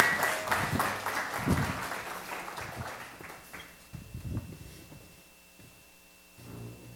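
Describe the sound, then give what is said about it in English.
An audience breaks into dense, steady applause, welcoming a director of discipleship and his helper before a Passover Seder demonstration; the applause swells briefly, then thins out and fades over a few seconds, leaving scattered claps and quiet room noise. “Let's give them a warm welcome and round of applause.”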